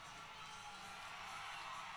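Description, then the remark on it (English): A crowd roars in a steady, unbroken wash of cheering and shouting that holds at an even level for the full two seconds, with no single voice standing out. “Like, the roar.”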